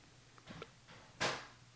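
A door being opened: a couple of soft handle clicks, then a short, fuller clunk as it swings free, fairly quiet against a low steady background hum.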